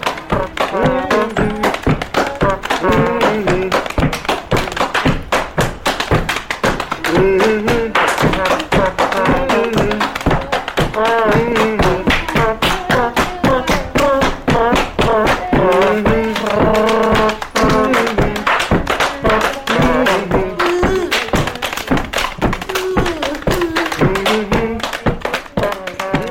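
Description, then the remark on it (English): Hambone body percussion: rapid, steady slapping and tapping on the body, loud and driving throughout, with a voice vocalizing rhythmically over the beat. “using tools and buckets and just playing the body. It's called hand bone.”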